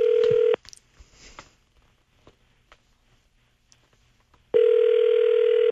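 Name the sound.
telephone dialing and ringing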